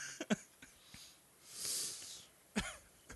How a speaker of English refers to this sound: Blow my nose.